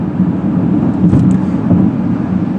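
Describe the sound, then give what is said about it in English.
A steady, loud low rumble with a broad hiss on top, road noise inside a moving car driving by the ocean around the Santa Barbara and Ventura area, continuous and unbroken with no voices. “And as I'm in the car, I'm looking out on the ocean right now.”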